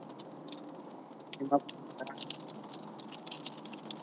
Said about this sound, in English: This is like the first time that it's been raining like ever. And right now, while we're podcasting, it is pouring down on the interstate.